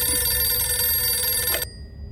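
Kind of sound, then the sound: household object, telephone bell ringing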